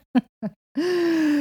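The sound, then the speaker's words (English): A pet sitting beside the speaker on a lounge breathes heavily: two short, throaty huffs, then a long, steady groaning exhale that holds an even pitch. No one speaks. “And he's sitting here breathing, making his own contribution, as you can hear.”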